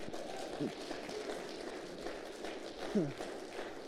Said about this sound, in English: Now, I appreciate the clap. I appreciate the applause.